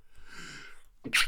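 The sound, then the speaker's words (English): A single sharp sneeze bursts out at the end, preceded by a drawn-in breath with a faint hiss; no talking, just the quick inhale and the loud explosive release. “Bless you. Bless you.”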